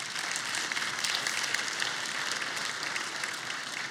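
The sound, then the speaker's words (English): An audience applauds a woman, a dense wash of many hands clapping at once, sustained and even for several seconds with no voices over it. “Why don't you give her a round of applause?”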